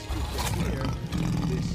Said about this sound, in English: You know, a lot of the roars are actually big cat sounds. Like lions and shit?